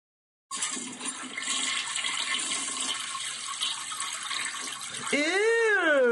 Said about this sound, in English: which of these sounds is the grossest toilet flush?